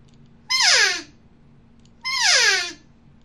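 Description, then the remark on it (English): Two loud, raspy elk cow calls blown with an exhale on an open-reed call, each a nasal mew that starts high and slides downward, separated by a short pause over a faint steady hum. “I'm going to blow a cow sound with this open reed.”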